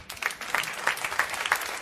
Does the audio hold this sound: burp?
no